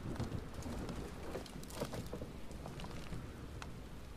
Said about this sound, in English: The rain was letting up now.